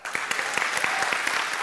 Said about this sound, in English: Good morning, church. How's everybody in the house? Good. That was like a wave of clapping. It kind of started over here.